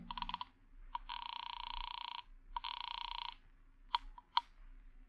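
A telephone is dialed with a quick burst of tones and clicks, then two long, steady ringing tones sound in succession, followed by a few sharp clicks as the line picks up.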